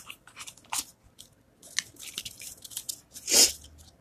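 Cards being shuffled: a run of quick, crisp papery clicks and flutters with short pauses, building to a louder riffling burst near the end. No one speaks.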